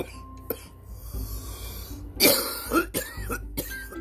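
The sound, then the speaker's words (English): A person coughs a few times in quick, harsh bursts, with a low background hum underneath and no speech. “I don't mean to be coughing in front of y'all, but we all sick, we all gifted, we all cursed.”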